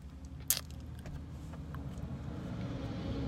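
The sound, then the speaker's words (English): A heavy garbage truck rumbles past, its low engine drone steady throughout, with one sharp metallic clank near the start and a few lighter rattles. “Garbage truck just passed by me.”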